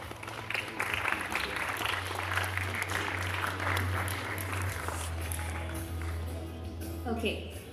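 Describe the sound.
An audience applauds the judges and mentors of an event, a dense, even wash of many hands clapping that runs the whole clip, with a low constant hum underneath and a voice briefly rising near the end.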